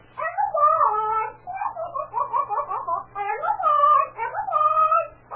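A parrot squawks and chatters in a stream of garbled, speech-like calls, its pitch swooping up and down through several bursts, with a faint steady hum underneath.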